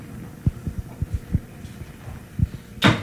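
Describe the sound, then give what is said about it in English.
A kettle full of water starting to simmer: soft, irregular low knocks and ticks from the heating water, then a brief rushing hiss near the end. Fairly quiet, with no voices. “Oh, it looks like it's simmering a little. It's beginning to simmer.”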